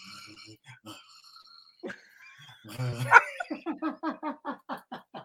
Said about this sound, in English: That's two dogs growling.